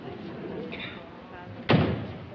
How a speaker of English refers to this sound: Wait a minute. I want to shut the door. Wait till I shut the door.